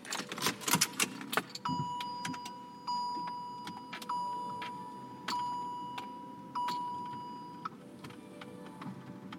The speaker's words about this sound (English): I have to turn on the air conditioner.